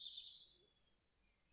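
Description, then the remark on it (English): A high, thin bird trill from the spring dawn chorus rings steadily for about a second before fading out, clear against a faint, quiet background with no voices. “Listen to the birds, and take a moment to just turn your focus inwards.”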